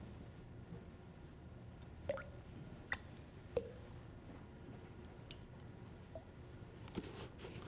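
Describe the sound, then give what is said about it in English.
Liquid latex is poured from a freshly opened container into a container of water. It is heard as a few soft, wet plops and drips spaced irregularly over a low, steady background hum, fairly quiet. “So we're going to open it up here. And we'll pour some in there.”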